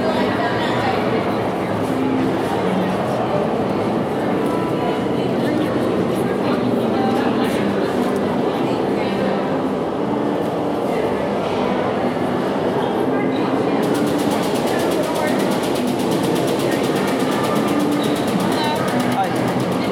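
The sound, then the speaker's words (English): Busy station ambience at a theme park stop of the Hogwarts train, which runs from Diagon Alley to Hogsmeade, with steady low rumble and a crowd chattering throughout; a brighter hiss rises partway through as the train noise grows. “hopefully we get a compartment by ourselves and we can chat in the train.”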